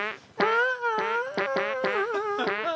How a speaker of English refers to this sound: Why, can you make a fart tune out of there, and I'll sing it with it with my ass?